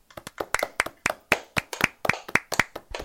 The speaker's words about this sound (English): And as we do with every single episode, we're going to go ahead and clap it out.